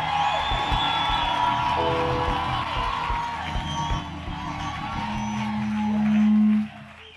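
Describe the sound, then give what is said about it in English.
An audience claps and shouts praise to God together, a dense, loud wash of cheering voices and irregular hand claps. A sustained low tone swells toward the end before everything cuts off. “I want you to clap your hands and give God a shout of praise in this.”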